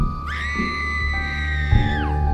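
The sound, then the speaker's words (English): A single long, shrill scream from down the street rises sharply, holds a steady high pitch for nearly two seconds, then drops away, heard over a low, steady ambient rumble with no talking. “And then I heard a scream from down the street.”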